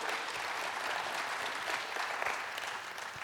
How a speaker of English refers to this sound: Oh, give the Lord a hand clap of praise.